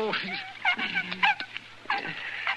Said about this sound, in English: He's an awful sick dog. You gotta help. Yeah, what's the matter? Somebody shoot him? No, he's been up against some wolf bait.